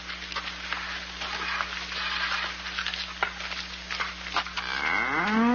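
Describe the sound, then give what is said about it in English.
A big cow lets out a low, drawn-out moo near the end, rising in pitch, over a steady crackling, hissing background noise with a constant low hum. “I mean, look at this big cow.”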